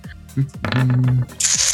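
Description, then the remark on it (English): Dice clatter and tumble across a hard tabletop in a few quick rattling bursts, ending in a brighter skittering roll that comes up five, with a faint murmur of voice underneath. “Five on the dice this time.”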